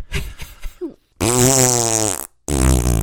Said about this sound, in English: Fart noise.